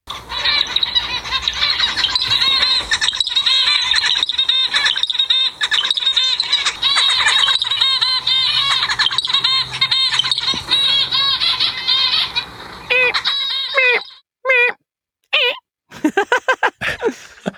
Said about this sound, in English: I know anybody that I've shown the video of zebra finches singing, they always say that's actually less beautiful than I expected. They expected this like melodic performance. I would barely go so far as to call that a song. Sorry, zebra finches.